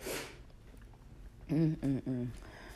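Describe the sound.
A dramatic sneeze: a sharp, hissing burst of breath at the start, then after a pause three loud, drawn-out voiced exclamations in quick succession.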